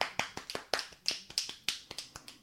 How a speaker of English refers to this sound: You might have heard him earlier snapping. That was me. Yeah. Those are the fingers. It's like to simulate applause.